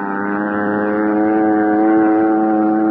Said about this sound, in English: I watched Al's plane until it was swallowed by the darkness.